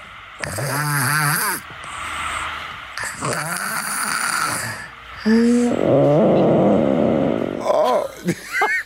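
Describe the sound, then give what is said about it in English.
A 2-year-old boy snoring: loud, raspy snores in a steady rhythm of breaths, some with a squeaky whistling tone, ending in a few short, croaky gurgles. “This is the snoring that Adeline sent in.”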